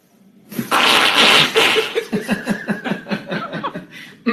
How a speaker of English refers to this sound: I don't think they're real farts. I think what's happening, I think they're putting the fart noise in when the cracking's happening.